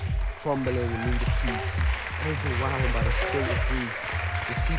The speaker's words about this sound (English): Yes, come on, round of applause for our media department. They're doing a great job.